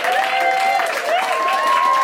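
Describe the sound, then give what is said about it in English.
The audience of the panel show Global Pillage applauds the keyboard player with dense, continuous clapping, overlaid by a few sustained higher-pitched cheers or whoops, staying loud and even throughout. “Give it up”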